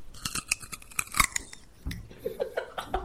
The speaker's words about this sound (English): Carrots are just like a snap.